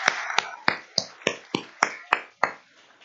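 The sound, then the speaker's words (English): A short round of applause for a birthday: about nine crisp, sharp claps at a steady, even pace, like one person or a small group clapping in unison, with no voices. “Shall we just do a little round of applause?”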